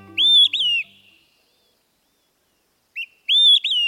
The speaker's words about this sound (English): Well, they use whistle, for example, to describe the sound of an olive-sided flycatcher.